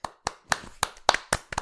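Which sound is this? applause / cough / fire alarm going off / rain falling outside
applause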